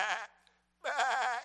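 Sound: sheep bleating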